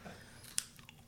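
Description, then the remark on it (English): Someone crunches on Cheetos cheese puff snacks: one sharp, crisp bite stands out, followed by a softer crunch and quiet chewing, with no talking. “I should have known better than to bring the Cheetos out. You literally can't stop.”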